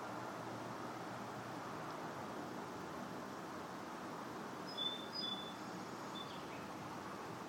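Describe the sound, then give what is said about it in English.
A few brief, high bird chirps come in short bursts near the middle and end, set against a constant wash of traffic rumble. “There's all of those different sounds arising out of the silence. The birds and the traffic.”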